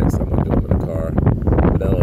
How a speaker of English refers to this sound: So, brothers and sisters, I know that this broadcast is very windy right now. I really understand that.